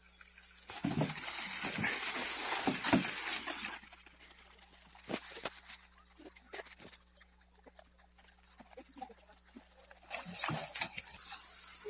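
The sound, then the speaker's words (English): Someone fetching water by hand for home use: uneven splashing and clattering in loud bursts near the start and again at the end, with quieter shuffling and faint knocks in between. “This is how we fetch water for home use, because our well was broken down.”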